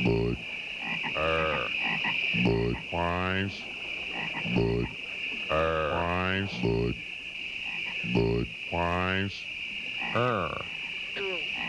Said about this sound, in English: That one was actually the Budweiser one had a three-way tie for Budweiser. First one was the What's Up. The second one was the frogs. Yes, the Budweiser.